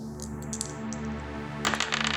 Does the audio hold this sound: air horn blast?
no